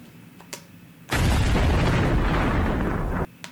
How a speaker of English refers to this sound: Can we get an explosion?